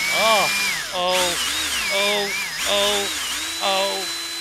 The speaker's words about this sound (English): He says drilling sounds. Oh, it's go time.